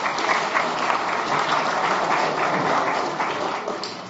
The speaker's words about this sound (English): Thank you, my volunteers. Just want to give them a round of applause.